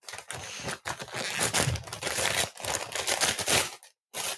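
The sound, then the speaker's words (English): Loud crinkling and tearing of a stapled-shut paper food bag being ripped open right up to the microphone, a dense burst of rustling and ripping that continues for several seconds, with a brief pause near the end before one more crackle. “Also, they've really stapled this bag closed. That's why you hear a lot of rustling.”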